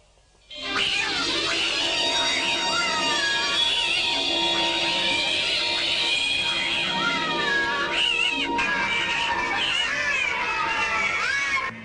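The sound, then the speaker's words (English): A dense chorus of many cats at a man's house in a film, meowing and caterwauling at once, loud and continuous, with overlapping wavering yowls that fill the whole stretch without pause. “It's a crazy film, but this guy's got all these cats at this house”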